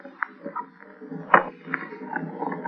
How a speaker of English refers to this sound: A trap door.